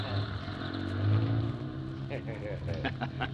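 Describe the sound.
The heavy engine of a moving van rumbles and revs up as the van, just turned around, pulls away, a steady low drone with rising pitch, while voices talk over it toward the end.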